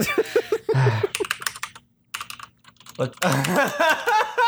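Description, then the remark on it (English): Rapid clicking of keys on a computer keyboard, coming in quick irregular bursts in the background, with people talking before and after the typing. “Oh, you're typing in the background.”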